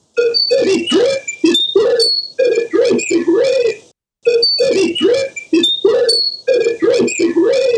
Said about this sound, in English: So probably that didn't sound like very much to you. That's a sine wave speech file. It's a degraded replica of recorded speech that's been stripped of most of the normal speech attributes and acoustics.